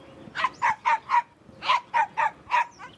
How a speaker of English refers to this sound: the poodle apparently threw a fit. The dog wouldn't stop barking at the bag.